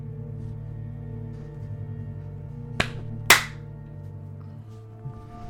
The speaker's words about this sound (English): Did you get it? I did not. I didn't hear your clap. You got it. I clapped. I got it. We're good.